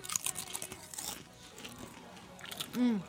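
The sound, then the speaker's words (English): A loud crunch of biting into a crispy Hickory Barbecue chip, followed by scattered chewing crackles, with a brief voiced murmur near the end. “It's really crunchy.”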